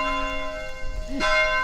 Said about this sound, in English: The bells ring prior to each time of prayer, and if they have stopped ringing before you get in the church, you're probably going to be late.